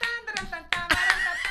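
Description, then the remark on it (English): Several sharp hand claps ring out in an uneven burst, with overlapping bright smacks against a faint background hum, as people in a car clap while stopped at a red light. “Hey, it's a red light. Everybody clap.”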